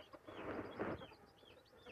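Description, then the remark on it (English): A male chicken kept as a home pet makes soft, low clucking sounds that swell briefly in the middle, followed by faint higher chirps. The sound is quiet overall, with no talking. “If he survives, he'll be the most loving chicken.”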